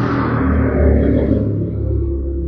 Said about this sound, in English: Much like the aggressive motorcycle is foreshadowing for lots of noise.